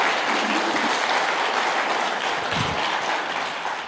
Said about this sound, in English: One more round of applause for everybody sharing. That was awesome.